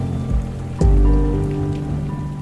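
Steady rain patters on a surface, with a sharp thump partway through followed by a louder, lingering wash of rainfall.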